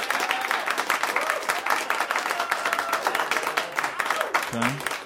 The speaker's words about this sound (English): What did we just do, Larry? Did we just clap for Larry?